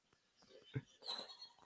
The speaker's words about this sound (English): And also, if you can hear snoring, I apologize. My dog is passed out in her chair on the other side of the room right now and is snoring.